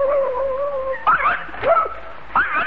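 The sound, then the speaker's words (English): A dog named Psyche whimpers in a long, thin, high whine, then lets out a few short, sharp yips in quick bursts, moderately loud with no talking. “Well, fine watchdog you are, Psyche.”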